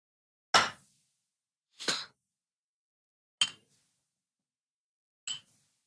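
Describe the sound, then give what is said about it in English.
Four sharp clinks of mugs knocking together in a toast, spaced unevenly over several seconds, each a bright, ringing hit that fades quickly, with no talking between them. “Makes me wonder how hard you guys usually clank.”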